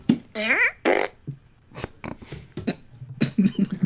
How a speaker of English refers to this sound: Your ability to not laugh is compromised by, like, the shortness of the fart. Like, if it's really quick, there's, like, a really hard silence, and then you start laughing. I guess if it's a longer fart, you can kind of contain yourself.